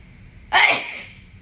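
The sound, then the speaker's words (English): A single sharp sneeze bursts out, loud and breathy, then trails off quickly into a faint steady hum. “Hold on, I'm gonna sneeze.”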